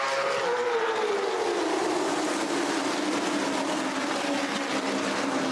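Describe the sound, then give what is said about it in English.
Loud, steady roar of racing stock car engines in a CARS Tour race, with a descending engine pitch as a car passes by, continuous and dense with no voices. “Let's enjoy the sounds of the Cars Tour.”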